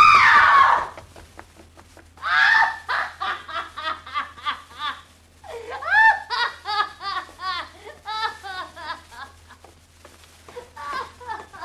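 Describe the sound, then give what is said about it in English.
A drunken woman lets out a loud, shrill scream as a trick right at the start, followed by a long run of high-pitched, breathless shrieking bursts that sound close to hysterical laughter. “She screamed.”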